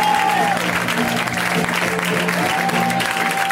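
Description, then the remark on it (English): An audience breaks into sustained applause for a performer at a show, a dense, steady wash of clapping that stays loud and even throughout, with a faint murmur of crowd voices mixed in. “So give it up for Adam Burke one more time.”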